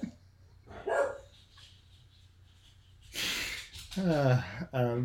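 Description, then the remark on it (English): Dogs in an office let out a few scattered barks: one short yelp early on, then a louder cluster of harsh, rough barks toward the end, with quiet stretches between. “my office mates today are my dogs, so if you do get some stray barking in the background, we'll just see what happens.”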